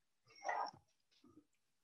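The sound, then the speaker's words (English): A female dog whimpers in two short, whiny bursts, the first longer and stronger, the second softer and brief, while knocking and asking to be let in. The sound is fairly quiet, with no talking around it. “That's my dog.”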